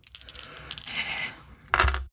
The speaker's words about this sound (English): And I will roll my 3 dice. See what happens.